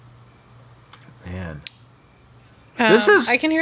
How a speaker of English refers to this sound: I can hear the crickets at your house. Oh, yeah, sorry, I have the window open.